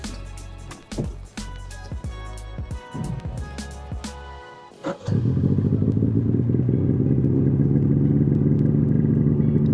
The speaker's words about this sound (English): I jumped on a snowmobile behind a patroller named Ian and headed to the training area